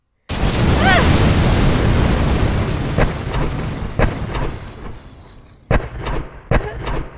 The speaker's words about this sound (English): I can hear the bombs falling and soldiers shooting back. The bombs keep coming.